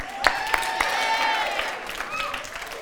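An audience at an evening talk claps steadily for a few seconds as a speaker is introduced, a dense wash of hand claps with a few sharper claps early on and some cheering or whoops mixed in.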